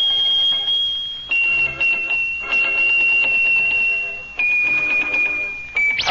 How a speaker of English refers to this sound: Look at that. Oh, how he shakes those bells.